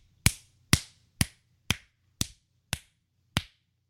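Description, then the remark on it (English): Seven crisp finger snaps at a steady, even pace, each sharp and bright with a quick decay, over a faint low hum and no talking. “It's excessive snapping?”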